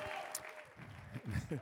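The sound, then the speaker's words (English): An audience at a worship service claps together in a dense, steady patter, with voices calling out over the clapping. “Come on, I need you to clap your hands, stomp your feet, and magnify the Lord with me.”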